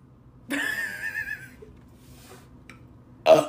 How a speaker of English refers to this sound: Those boys in second grade taught me I can burp on command.